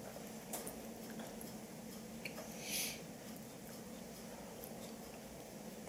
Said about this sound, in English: Your mother's clock is still going.